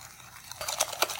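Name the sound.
whisking batter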